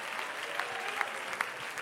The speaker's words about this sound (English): I wish somebody would clap their hands and let the devil know you still have a hand clap of praise, that you still have a voice.